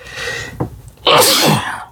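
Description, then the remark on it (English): A single loud sneeze bursts out after a brief sharp intake of breath, with a faint background hum and no talking. “Bless you.”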